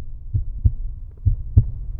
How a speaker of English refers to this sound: There was no traffic, no sound. I could hear my own heart thudding.